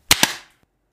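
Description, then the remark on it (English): A group claps together on the fourth beat after a count of 1, 2, 3, landing as two sharp, loud bursts just apart with a ringing tail, then a single faint stray clap. No one speaks. “I'm just asking you, are we counting 1, 2, 3 and clap on 4?”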